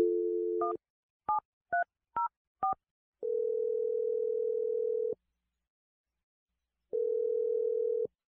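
A steady telephone dial tone gives way to four short touch-tone beeps as a phone number is keyed in live on the radio show Brooke and Jeffrey in the Morning for a second date update call, followed by two long ringback tones with a pause between them, clear with no talking.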